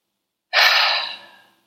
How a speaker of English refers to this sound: So, and you can even hear, I have to clear my throat. Thank you, throat chakra. Wanting to make sure I feel confident. So I'm going to take a breath.